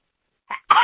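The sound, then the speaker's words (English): A single sneeze: a short sharp intake burst followed by a louder, explosive breathy release, abrupt and alone with no talking around it. “Bless you.”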